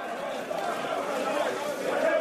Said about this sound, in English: The crowd roars with grief as each body arrives.